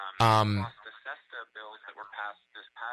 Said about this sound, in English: Can you hear? We can hear the echo of of our own voice. Yeah. Are you listening on a speaker?